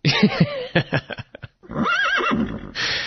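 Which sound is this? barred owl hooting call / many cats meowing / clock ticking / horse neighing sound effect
horse neighing sound effect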